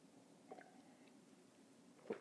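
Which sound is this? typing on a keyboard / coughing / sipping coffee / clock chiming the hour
sipping coffee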